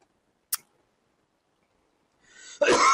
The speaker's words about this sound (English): Okay, oh, I'm gonna give you a cough fucking button, man. That's so fucking annoying.